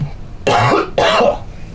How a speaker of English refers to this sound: I'm getting sick. Made my cough even worse.